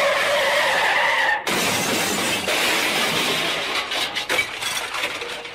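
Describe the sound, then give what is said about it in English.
Loud, harsh squealing of car brakes lasting several seconds, a shrill grinding screech with a brief break partway through, with no voices. “Yeah, so if you hear some odd noises, some squeals from some of the guys where I'm...”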